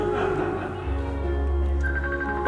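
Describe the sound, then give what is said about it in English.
A phone ringtone plays in sustained, steady electronic tones over a low hum, with a higher note joining toward the end. No one speaks. “Somebody answer that phone, please.”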